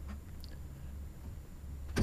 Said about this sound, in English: Hear the door open.